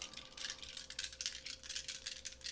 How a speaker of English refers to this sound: Why don't you roll some dice